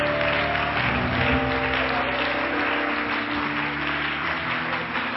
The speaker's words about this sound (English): Why don't we give the Lord a great hand clap of praise today?